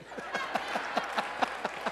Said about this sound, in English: Well earned. Come on, give him a big hand clap.